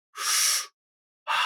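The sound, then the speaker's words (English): A deep, airy breath drawn in through the mouth and into the belly, fairly loud, then a short silence before a second breath begins and is cut off at the end. “But that one is, it's a breath in through the mouth, and you're breathing deep into your belly and sort of kind of arching with each breath.”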